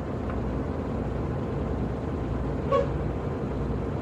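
A steady, low engine rumble fills the interior of a bus while it is driving, constant throughout, with a brief faint tonal chirp near the end and no voices.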